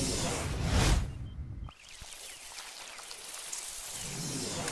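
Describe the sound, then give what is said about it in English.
A snake hisses in a loud, steady rush of air that cuts off for a moment, then resumes as a softer, sustained hiss. No one speaks. “Oh, look at you. You a smart snake, huh?”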